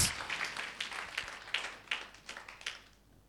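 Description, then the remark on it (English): Sparse, half-hearted clapping from an audience: scattered, irregular claps from only a few hands, never building into full applause, thinning out and fading to quiet by the end. “Hey, the clapping is weak.”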